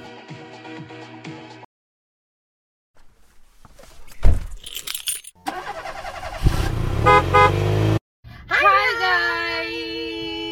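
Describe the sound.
Car sounds: a brief clatter like keys or a door, then a loud burst of engine-like noise and a bright, honking horn-like tone, with some voices briefly at the start.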